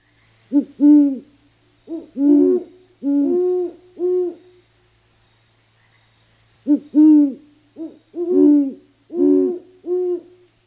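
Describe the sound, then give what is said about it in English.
A pair of great horned owls hoot back and forth in a low, resonant duet: two rhythmic bursts of deep hoots, a few seconds of quiet, then another series, clear. “And if you were outside and listening earlier in February, you've heard some of the great horned owls that just don't wait for true spring to start before finding mates and laying eggs.”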